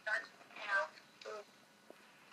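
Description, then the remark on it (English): Tinny, band-limited voice audio plays from a phone speaker in a few short bursts, thin and lacking low end, moderately loud with brief gaps between phrases. “Imagine we are using the same platform and somebody begin to put that phone on the loudspeaker like that. Then we cannot even able to focus.”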